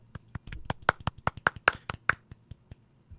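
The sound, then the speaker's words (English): A polite golf clap: a small group patting hands together softly in loose, scattered rhythm, a dozen or so light claps over a few seconds before tapering off, with no talking. “Let's do a golf clap.”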